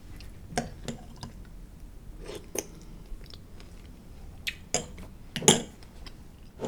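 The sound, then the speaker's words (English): Crunchy chewing of breakfast, irregular bursts of sharp crackling bites with brief pauses, loud against a quiet background, with occasional faint clinks. “Breakfast was crunchy.”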